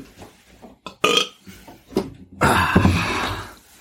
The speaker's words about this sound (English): …'s did a little burp